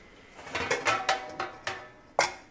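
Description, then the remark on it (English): Silverware and dishes clatter as someone pulls silverware out, a quick irregular string of about seven sharp clinks and knocks, moderately loud, with no talking. “One thing I'm going to have to do is pull all the silverware out of whatever.”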